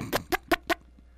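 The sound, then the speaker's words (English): Four quick, evenly spaced, sharp chicken clucks, fading out into a quiet background with no talking. “It has something to do with a yard bird.”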